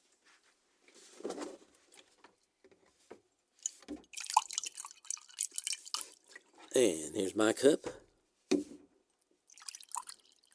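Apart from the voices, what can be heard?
water poured into cups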